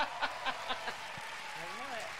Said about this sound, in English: Became a father for the fourth time. Never as much applause on that part. Really no applause, right?